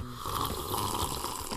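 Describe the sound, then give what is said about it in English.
A steady, breathy slurp of someone sipping mango juice, a continuous wet airy draw lasting over a second with a faint whistling tone and no talking. “gotta sip the mango juice first.”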